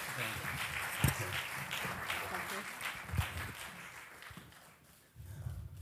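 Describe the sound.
An audience applauds with a dense wash of clapping and a few sharper individual claps standing out. It fades briefly near the end, then picks back up, with faint voices mixed underneath.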